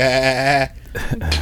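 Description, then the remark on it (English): A person imitates a goat with a single loud, quavering bleat lasting about half a second, followed by brief breathy rustling. “He sounds like a goat to me when he sings.”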